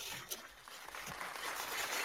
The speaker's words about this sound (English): The clapping lasts for a long time. A really long time.